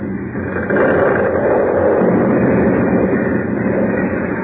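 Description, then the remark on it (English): A building, Harris Hall, caving into a hole, heard as a loud, continuous rumbling roar heavy in the low and middle range that swells after the first second and holds steady, with no voices. “Harris Hall. Cave right in the hole.”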